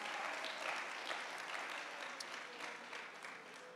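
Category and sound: crowd, audience applauding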